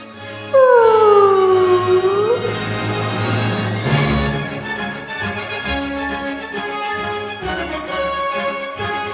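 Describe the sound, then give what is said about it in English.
A loud, wailing whale-like call glides downward over a humming electronic drone, then a whooshing sweep gives way to sustained sci-fi synth tones in a transition effect. “Let's hop inside the belly of our space whale friend and ride away home to the end of the podcast.”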